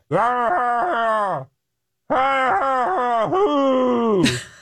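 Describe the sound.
A voice imitates a man screaming unintelligibly at 3 a.m., as captured by a security camera: two long, loud, wavering vocal bursts with a brief gap between them, the second ending in a strained, breathy cry.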